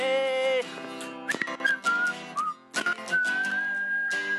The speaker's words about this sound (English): They like the whistling. I'll give you some more, baby. Here we go.